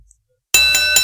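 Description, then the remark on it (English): After a moment of silence, a boxing ring bell clangs loudly, struck three times in quick succession, its bright metallic ring sustaining between hits, rung to start a wrestling match. “Let's kick it off. Ring the bell.”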